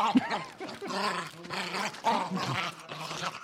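A dog growls and whimpers in a steady, continuous run of low rumbling and whiny vocal sounds lasting a few seconds, with no one talking over it.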